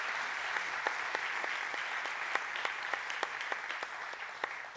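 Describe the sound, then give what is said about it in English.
A crowd claps steadily, a dense wash of many hands with sharper individual claps popping out, sustained at an even level throughout with no voices over it. “Let's give Wayne a nice loud round of applause.”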